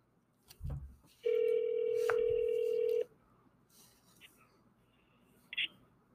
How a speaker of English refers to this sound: You guys, it's ringing.